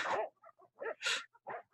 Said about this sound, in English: Now what he's going to do now is he's going to get the dogs so that they start barking. You can hear them there.